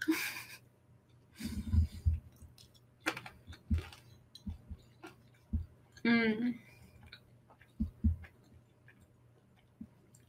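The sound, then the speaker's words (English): Crunchy chewing of air-fried sweet potato fries with coconut vinegar: irregular crisp bites and clicks spread over several seconds, with soft breaths and mouth noises between them. “I like the ones that are like air fried the most to where they're like crunchy almost. Like, I don't know if you can hear that last one.”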